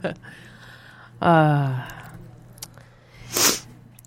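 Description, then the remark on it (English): A falling, hummed vocal sound is followed by a short, loud, gritty crunch as a sick person bites and breaks a hard cough drop between the teeth. “Oh, yeah, me crunching on a cough drop is going to be all me that.”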